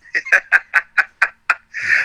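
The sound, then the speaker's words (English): A carrier pigeon calls in a quick series of seven clipped, clucking notes, evenly spaced, then ends on a longer drawn-out squawk, fairly loud with no talking. “We got your carrier pigeons, too.”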